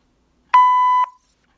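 A single steady electronic beep from an answering machine, signalling the caller to leave a message, about half a second long, with a clean tone and sharp start and stop, heard alone with no talking.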